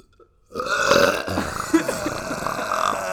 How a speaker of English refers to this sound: I can't burp on command.